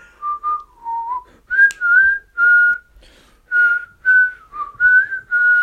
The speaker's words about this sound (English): I can't whistle.